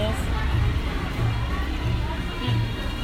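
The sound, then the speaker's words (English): Steady outdoor street ambience in Pokhara, Nepal, with a constant murmur of crowd chatter and indistinct voices, a low continuous hum of activity with no single sound standing out. “So we decided to do this outside so that you would have like kind of the authentic feel of Nepal and Pokhara.”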